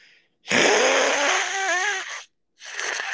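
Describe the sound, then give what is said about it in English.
A person imitates a demonic, human-sounding hiss like a bat or a human owl, heard from an upstairs bedroom: a loud, raspy, breathy hiss for nearly two seconds with a strained, wavering vocal tone, then a shorter, softer hissing breath after a brief pause. “almost like a bat, but like human sounding, like a hiss.”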